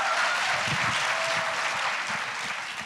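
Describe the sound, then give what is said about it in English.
An audience claps steadily for the panelists of a discussion at the Schomburg Center for Research in Black Culture in New York, after a screening of Abigail Disney's documentary The Armor of Light: a dense, sustained wash of many hands at an even loudness, with no voices standing out. “And once again, we should give a marvelous round of applause to all of them.”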